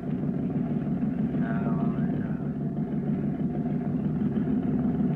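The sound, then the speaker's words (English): A boat engine chugs at low speed as the boat is held against the Lazy Jane, a steady, deep rumbling drone that holds evenly for several seconds with no voices over it. “Engine slow.”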